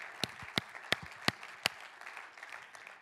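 An audience claps in applause as praise to God: five loud, sharp claps land in a steady rhythm over a dense wash of scattered clapping, which carries on more softly after the beats stop.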